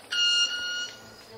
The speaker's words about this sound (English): It's like a truck backing up. Exactly, yeah. So he's not using his voice for that? It's just his wings? He's got this instrument. Yeah, it's called stridulation. So this is a cricket-winged mannequin would be a perfectly good name for this bird.